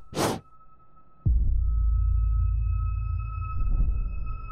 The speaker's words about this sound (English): And putting a big reverb in, when you bend, it creates this kind of lovely modulation. And that sound is me blowing on the microphone.